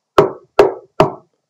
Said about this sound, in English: Somebody's knocking on the phone booth. He wants to come in. There's like two boys in the phone booth, all excited about this little talk that we're having with these girls. And there's this man. He wants in the phone booth.